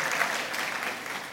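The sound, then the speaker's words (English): Steady audience applause for a speaker's 12th wedding anniversary, a dense wash of many hands clapping at an even, moderate loudness for the whole stretch, with no voices standing out. “And there will be many more, so next year you can applaud at the same time.”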